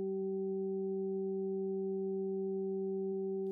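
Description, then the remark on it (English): A steady, unwavering electronic hum of three pure sine tones, Solfeggio healing frequencies at 192, 384 and 768 hertz, stacked together, holding at constant pitch and loudness for several seconds with no other sounds and no talking. “You are hearing three tones.”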